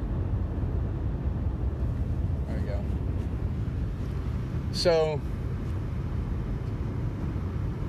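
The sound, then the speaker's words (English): A steady, low road-and-engine rumble fills the cabin of a moving car that is already hot inside, with a man speaking briefly over it and a short rising electronic chirp partway through. “It's already hot in this car.”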